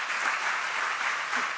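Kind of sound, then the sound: crowd, audience applause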